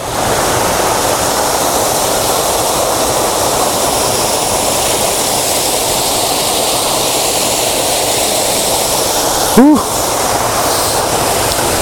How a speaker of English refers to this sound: Right, crossing this river with this camera was a daft idea. Whose genius idea was that?